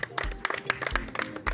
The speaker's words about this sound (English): We'll be dissecting all what happened today on our pitch and also how Umuna FC conquered the whole world with our trophy here. Guys, let's clap for our trophy now.